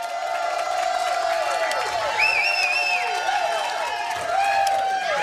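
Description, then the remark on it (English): A large sellout crowd at the Chiefs Kingdom Show, a live radio show at the Hy-Vee off Nolan Road in Independence, roars and cheers steadily, a dense wash of many voices with a few high whoops and whistles rising above the din, loud throughout the whole stretch. “Just awesome in this sellout crowd tonight.”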